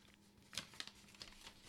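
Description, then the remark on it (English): Soft, crinkly rustles of paper being slowly unfolded, with a handful of brief crackles spaced irregularly over a quiet background and no voices. “As I slowly open the paper.”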